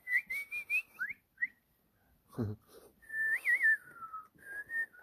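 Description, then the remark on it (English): A person whistles a few short, wavering melodic phrases, pausing briefly in the middle where a quick breathy burst cuts in, then whistling again with rising and falling notes. “I can whistle for you, dude.”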